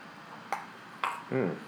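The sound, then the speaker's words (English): Two bright glass clinks about half a second apart, each with a short ringing tone, as if raising a toast, followed by a brief voiced sound at the end. “Okay, here we go. Cheers.”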